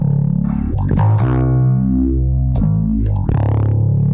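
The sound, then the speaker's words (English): A bass guitar plays a short, low riff through a phaser effect pedal with the mix turned way up, a swirling phaser effect sweeping through its tone, loud with no talking. “Okay, here's the mix. Okay, I turn our mix way up. So there's our phaser.”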